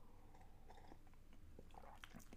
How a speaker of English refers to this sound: Let me sip. I was talking a lot. Let me sip some tea here.